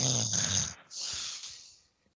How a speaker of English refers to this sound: My dog is in the other room and I can hear her snoring this. I love she's snoring. Oh, good God. I can hear her going.